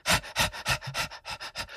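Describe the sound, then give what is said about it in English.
A person imitates running with quick, heavy panting, about seven loud, breathy huffs in steady rhythm, with no other sounds. “That was me running, not just, like, panting.”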